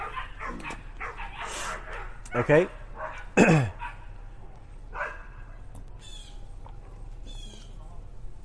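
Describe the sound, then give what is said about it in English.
Dogs bark in the background at Silver Lake in Raymore, Missouri, a few sharp yelps and bow-wows in short bursts, with a louder pair of barks near the middle, while a person speaks briefly over a steady low hum. “And we got some dogs barking in the background.”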